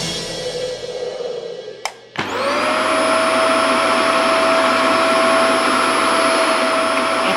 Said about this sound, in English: Activating the GZM power vacuum.